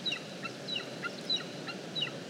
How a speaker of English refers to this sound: This young wedge-tailed eagle is really nagging Mum and Dad for some food.